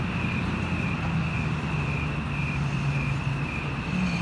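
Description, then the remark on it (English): Steady, loud road noise from nearby traffic, a continuous low rumble of engines and tires with a faint high whine, and no distinct breaks between vehicles. “Cars are awfully close.”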